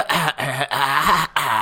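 A person gives a quick run of four voiced, throaty coughs, each short burst separated by a brief pause, with no other sounds around them, coughing on a doctor's request during a testicular examination.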